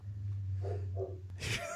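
A male dog makes a couple of short whimpering yelps, then a sharper, louder bark-like burst, all over a steady low hum.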